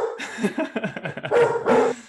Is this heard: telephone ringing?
no